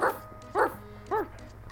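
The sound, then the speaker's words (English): Three sharp dog barks ring out at a steady, evenly spaced pace, clear, with a faint background hum between them and no voices, as a man's hunting dogs come bounding off a porch, eager for a chase. “he shouted to his dogs, and they came bounding off the porch, eager for a chase.”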